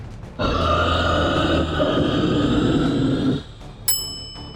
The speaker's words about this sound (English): The ringing of the hanging bell brought the story to a standstill.